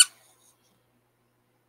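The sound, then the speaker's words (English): A single short, sharp squeak from a squeezed little rubber toy pig, bright, fading almost instantly into silence. “Here he is, a little squeaky pig.”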